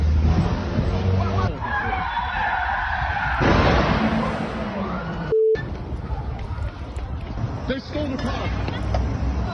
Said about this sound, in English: Now she started the car. She's revving it. I don't know if they really know how to drive yet. In a second, maybe she puts it in gear.